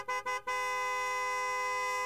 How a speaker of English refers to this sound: A Toyota applied its horn.